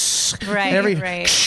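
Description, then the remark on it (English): A person imitates a giant snake head in a haunted house, with a sharp hiss at the start and end around a short voiced growl-like sound in the middle. “I'm not going to get scared by a fucking snake, a giant snake head that goes...”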